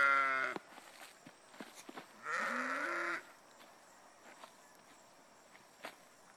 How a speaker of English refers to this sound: Sheep. Come on. Come on, sheep.